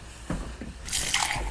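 A couple of soft, wet clicks followed by a brief gush of liquid as someone gets a drink of water at about 3 a.m.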